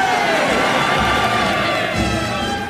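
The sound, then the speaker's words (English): A large crowd rising to its feet roars with loud, steady cheering and applause, a dense wash of noise that holds at the same level throughout without a break. “As the crowd rise to their feet and applaud, I look around and see the Prince smiling, the Prime Minister panicking, and the Queen taking a swing at Nicolas Sarkozy.”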